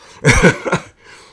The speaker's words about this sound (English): …, you are coughing like crazy.